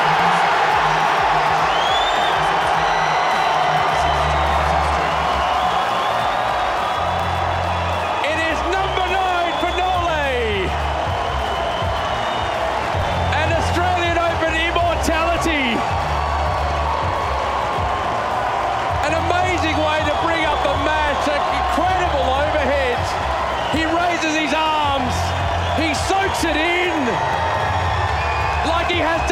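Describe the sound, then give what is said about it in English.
A tennis crowd in Melbourne cheers and applauds loudly and continuously for Novak Djokovic after he wins on championship point against Medvedev, 7-5, 6-2, a dense unbroken roar of clapping and shouts with occasional whistles, while a man's voice speaks over it. “He touches the courts and he accepts the applause from this crowd.”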